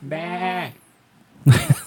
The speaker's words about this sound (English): not that kind. That's a sheep.